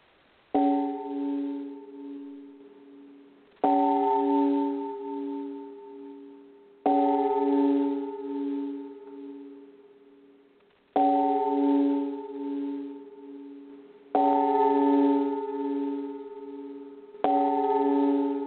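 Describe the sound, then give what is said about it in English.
A gong is struck six times in remembrance of someone who has died, roughly every three to four seconds. Each loud, resonant stroke rings out and slowly fades before the next, with no voices. “And now we will ring the gong 3 times 3 in remembrance, and then get to the show.”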